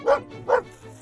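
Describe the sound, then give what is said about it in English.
A black-and-white female mixed-breed dog with the face of an Australian shepherd and the body of a cattle dog barks twice in quick succession, two short, sharp, fairly loud woofs with a brief pause between them and a faint trailing noise afterward. “She's got the face of an Australian shepherd, the body of a cattle dog, and the energy of a small child who just shotgunned a soda.”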